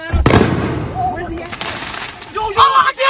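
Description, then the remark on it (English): A sharp, loud bang like a gunshot or firework pop rings out, followed by a fainter pop, with agitated voices shouting over the commotion. “which made it difficult to decipher if these were fireworks, if these were real bullets”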